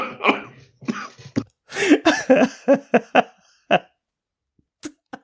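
coughing fit

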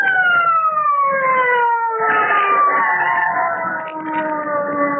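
police car siren

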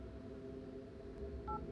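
telephone keypad dialing tones

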